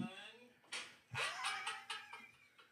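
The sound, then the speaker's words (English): A single sharp open-hand slap to the face cracks out, bracketed by high, strained vocal sounds and exclamations, like a yelp before and after the impact. “That had some good sound. There's no way the mic didn't pick that up.”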